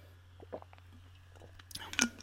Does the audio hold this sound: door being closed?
no